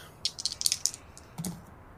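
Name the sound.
percentile dice being rolled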